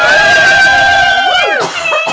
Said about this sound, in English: Sorry. Ruined the applause.